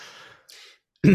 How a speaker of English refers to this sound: Excuse me, clear my throat.